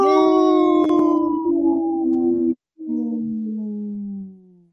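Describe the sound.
A person imitates a wolf howl on the Native Roots Radio show: two loud, sustained howls separated by a brief break, the second sliding gradually downward in pitch before fading out.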